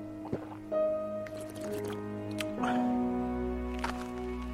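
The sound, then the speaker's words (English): A man chugs water from a bottle, a few wet gulping, swallowing and sloshing sounds at uneven intervals, over a steady humming tonal background. “He had a bottle of water in his hands. He chugged.”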